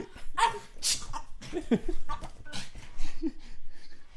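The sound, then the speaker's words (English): A dog makes odd, almost human-sounding vocal noises—a series of short, irregular yelps, snorts and squeaky cries, some clucking and sneeze-like, coming in uneven bursts over a few seconds. “What are you doing to that dog?”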